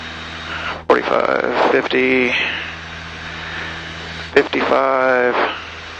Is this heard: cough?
no